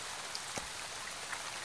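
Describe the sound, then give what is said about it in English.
Steady rain falls on puddles, a dense, even hiss of splashing drops with one slightly heavier drip standing out, and no voices. “The main problem with all this rain, they discovered, was that it did get pretty chilly after a while.”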